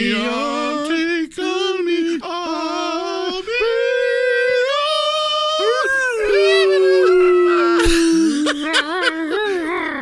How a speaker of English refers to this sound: All the dogs on the street are fucking howling. Or there's just the one that goes like this.